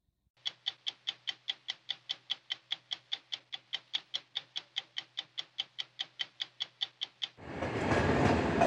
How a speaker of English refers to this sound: This is the main Polish station where 5 to 10 trains a day escape Russia's war on Ukraine. Each arrival brings 2,000 women and children compressed into standing room only.